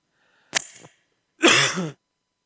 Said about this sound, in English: Struggling with a little bit of a cough.